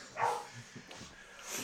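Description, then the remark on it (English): A dog barks in a garden, one sharp bark near the start followed by a few softer yips and whines, against a quiet open-air background. “that dog is basically just going to wander out into the garden, stand, there we go, and start shouting.”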